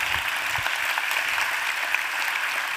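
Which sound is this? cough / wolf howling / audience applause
audience applause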